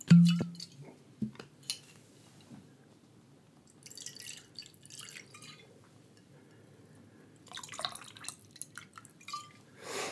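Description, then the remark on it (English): Vodka is poured into a glass: a sharp clink at the start, then a steady liquid gurgle with bubbly, splashing bursts that swell again near the end. No one speaks. “Stop briefly atop my glass and fill it up.”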